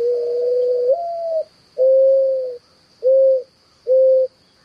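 A mourning dove coos: a long, soft, mournful note that swells slightly upward, followed by three shorter hollow coos evenly spaced, over a faint steady high hiss.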